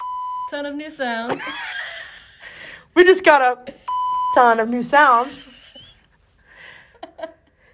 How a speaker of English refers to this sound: I'm sure you hear the sensor bleep too. We got a shit ton of new sounds.